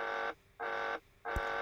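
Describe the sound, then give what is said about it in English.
A caution and warning alarm aboard the Skylab space station, signalling a leak from the docked Apollo spacecraft, sounds in three loud, even electronic buzzing pulses with short gaps between them, harsh, with a brief thump during the last pulse. “This was confirmed by a caution and warning alarm in the Skylab.”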